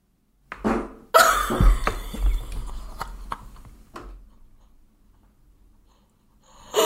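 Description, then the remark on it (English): A brief puff, then a loud, raspy fart that sputters and trails off over a few seconds into quiet. No one speaks. “Oh, I think I'm gonna fart.”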